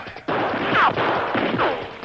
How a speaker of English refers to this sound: The bullets came close.